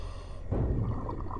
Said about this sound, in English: That's fairly loud. It sounds like something slamming in or being hit into the Wallaby on the opposite side from you.